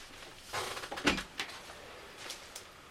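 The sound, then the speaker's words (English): Scratching at a door: a few rough, scraping bursts against the wood, fairly loud, a cluster early on, then a couple of fainter scrapes after a short pause. “Open door and let the big man in. You can hear him. You can hear him. Scratching.”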